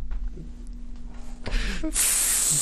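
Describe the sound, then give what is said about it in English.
A person imitates a snake, letting out a short breathy rush followed by a steady, loud, sharp hiss that holds to the end, with a faint low hum underneath. “I didn't want to interrupt it because it was just, but when you're talking about all the symbols or whatever, I always think about Trump with that snake when he hisses at the media.”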